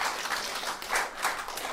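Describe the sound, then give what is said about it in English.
A crowd applauds, a dense, hissing patter of many hands that holds steady for under two seconds with a few gentle swells. No one speaks over it. “You clap, but that mop's a man-stealer.”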